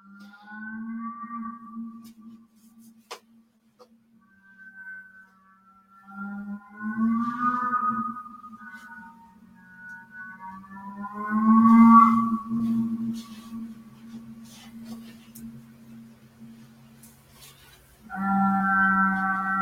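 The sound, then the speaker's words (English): A reconstructed Therizinosaurus dinosaur vocalization: a deep, droning call with a steady low hum and wavering, moaning overtones that swell and fade over about twenty seconds, ending in a louder, harsher blast; no one speaks. “Dinosaur vocalization”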